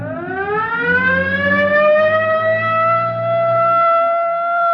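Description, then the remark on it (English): A police car siren winds up from a low pitch into a loud, sustained wail, steady for several seconds over a low engine rumble, with no voices, as the police car heads down toward Rosecrans. “Better hit the siren.”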